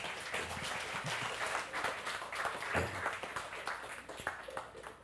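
A crowd at a worship service in Orville applauds steadily for about five seconds to welcome a guest speaker, a dense wash of many hands clapping at an even loudness, with a few sharper individual claps standing out and faint voices mixed in.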